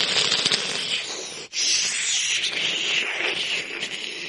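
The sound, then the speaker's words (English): Heavy rain pours down in a dense, steady hiss that stays loud throughout, broken only by one brief dip partway through. No one speaks. “And the heavy rains began to pour.”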